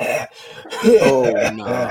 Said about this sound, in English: Like you coughing too much right now, my nigga.